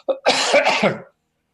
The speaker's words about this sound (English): I've got a cough, mate, pardon me.